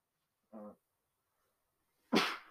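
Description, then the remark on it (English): A single sneeze: a short voiced intake, a brief pause, then a loud, sharp burst of breathy noise. No one speaks. “Bless you. Bless you.”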